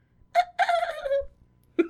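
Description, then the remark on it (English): A human voice gives a shrill, screechy bird-like call in three bursts, a short cry, a longer wavering descending screech, then a brief final squawk, fairly loud, imitating a bald eagle. “I like my theory that they make bald eagle noises.”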